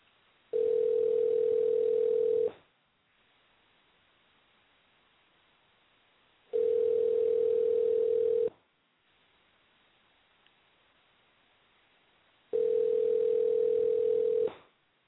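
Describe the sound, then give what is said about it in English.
A telephone tone rings out three times while a call is placed, each steady two-second buzz followed by about four seconds of quiet, thin and narrow like it's coming through a phone line. “Well, I'm going to try to call him one more time.”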